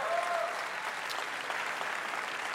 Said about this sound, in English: How about Tim, everybody? Give Tim a big round of applause.